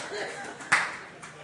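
Sparse, scattered clapping from a small audience, with one sharper clap standing out near the middle and a few softer ones around it over a faint crowd murmur.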